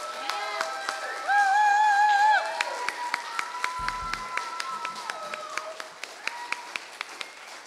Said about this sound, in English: So can we give a round of applause for our pastor and his wife? Come on.